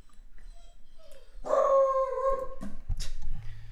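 A dog lets out a sustained, wavering howl lasting about a second, then breaks into a couple of short, sharp barks, fairly loud with no talking.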